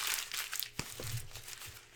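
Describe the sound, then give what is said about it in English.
Paper being crumpled into a ball: a steady run of dry crinkling and crackling for about two seconds, with a few sharper crunches in the middle and no voices. “Here, crumple it up.”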